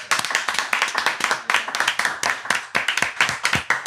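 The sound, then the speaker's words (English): A small group in a studio in Encino claps steadily to welcome fighter Ben Askren, the sharp overlapping hand claps forming a dense, bright patter that stays loud and even throughout, with no voices over it. “So we'll just stick with the clap.”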